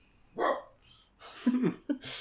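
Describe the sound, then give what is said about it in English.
A dog barks a few times while staring at a window, sharp separate barks with short pauses between them, moderately loud with no talking over it. “He's just staring at the window, just barking.”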